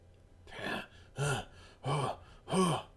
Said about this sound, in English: I'm hurt. I don't think I'm breathing too steadily anymore.